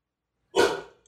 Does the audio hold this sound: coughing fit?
no